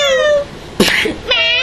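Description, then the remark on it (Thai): A cat meowing sound effect: a cat meows twice, fairly loud, the drawn-out cries split by a brief noisy burst like a hiss or scuffle in the middle. “ซาวด์เอฟเฟกต์หรอมะ แมว”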